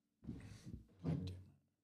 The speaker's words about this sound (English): Damn. Knocked everything over. Damn.